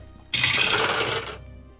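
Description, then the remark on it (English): Dice clatter and rattle for about a second in a dense, continuous burst of hard little clicks that starts abruptly and then trails off, with no voices, as the dice are rolled for an assassinate attack. “So, I want to roll the dice because I haven't landed an assassinate yet.”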